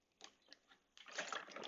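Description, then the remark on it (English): Water being poured for a drink: a few brief splashes, then a steady, continuous pour, fairly quiet, with no talking. “let me get some water.”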